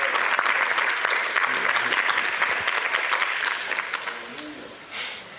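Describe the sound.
A crowd claps loudly and steadily as a clap offering to God, in a dense burst of applause that thins slightly toward the end, with faint voices mixed in underneath.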